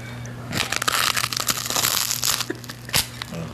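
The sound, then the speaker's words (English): Crisp, crackly crunching of a delicate piece of bread, a dense run of brittle bites and crinkles with a sharper crack near the end, over a low steady hum. “A delicate piece of bread.”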